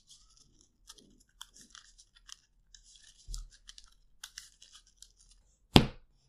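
Papery riffling and clicking of a player's deck of cards being shuffled during a card game, with scattered crisp snaps building to one loud, sharp burst near the end; no voices.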